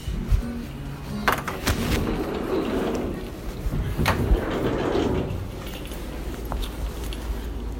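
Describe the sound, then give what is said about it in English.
Shuffling and rustling as a person puts on their shoes, broken by several sharp knocks and clunks, then the creak and thud of a door opening as they walk out to head to work, over a low background rumble. “Just putting my shoes on and walking out the door here.”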